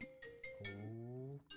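mobile phone ringing

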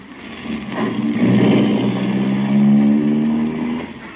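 car engine running

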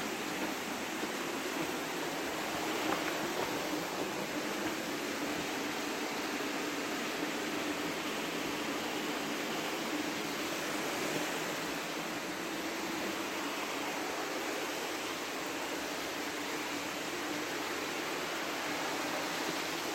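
running water

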